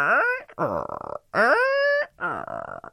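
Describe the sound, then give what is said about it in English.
A voice imitates a creaky swing with four strained, groaning vocal squeaks, each sliding upward in pitch, alternating between longer rising creaks and shorter rougher ones in a back-and-forth rhythm. “Hopefully our swings will be swingy and not all creaky and oily and...”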